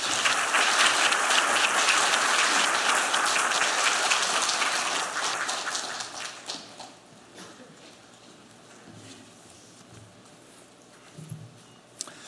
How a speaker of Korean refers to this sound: 우리 강사 목사님 나오실 때 크게 박수로 환영하겠습니다.